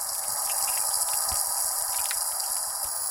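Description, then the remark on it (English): Heavy rain from a summer storm pours down in a steady, dense hiss, with scattered patters and drips. The downpour stays loud and even throughout, and no voices are heard. “Tis the season of summer storms, and while some folks relish all that excitement of crashing thunder and pouring rain, others say their blood runs cold at the first flash of light”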